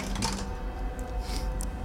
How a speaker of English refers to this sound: The sound of that dice tower is just great.